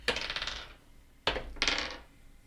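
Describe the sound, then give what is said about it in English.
Dice clatter and tumble across a hard tabletop in two separate rolls for an insight check, each a quick burst of bright rattling that bounces and settles, fairly loud with no talking; the rolls come up 3 and 2. “Roll insight.”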